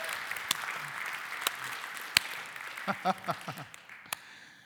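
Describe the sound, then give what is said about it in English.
A church audience applauds during a Sunday morning service, a dense crackle of many hands clapping steadily at moderate volume, with a few sharper individual claps and brief voiced murmurs near the end as it fades. “Also want to say, I guess, yeah, all right, yeah, let's clap.”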